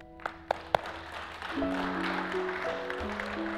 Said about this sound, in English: Can we get a little applause for that, people?